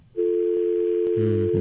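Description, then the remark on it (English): A steady telephone dial tone hums on at moderate volume, joined near the end by a second, lower pulsing tone, with no voices. “Oh, wait, he's on the phone.”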